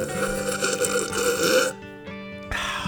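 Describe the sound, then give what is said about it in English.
A long, loud slurp of coffee from a metal mug, followed by a brief ringing metallic tone, then another short burst of slurping. No one speaks. “You can tell that metal ring to your echo of the slurp.”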